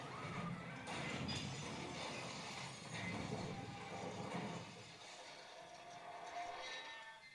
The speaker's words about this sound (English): Fantastic. Now, for those of you not watching, she's just crashed into a pile of boxes.